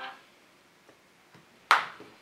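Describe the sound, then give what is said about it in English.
A mobile phone belonging to a man's wife gives a single bright, sudden alert chime that rings out and fades over a fraction of a second, preceded by a few faint soft taps and no talking. “That is part, that's my, not my phone. My phone is here, that's my wife's.”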